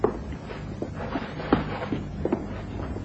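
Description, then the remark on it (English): The door to a professor's room in a house swings open with a few soft knocks and creaks spread over a couple of seconds, quiet against a low hum, with no voices. “The door to the professor's room is now wide open.”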